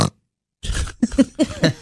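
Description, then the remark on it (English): A person mimics a pig with a run of rough, nasal snorts, about four short grunting bursts in quick succession after a brief silence, fairly loud. “Snort, pig.”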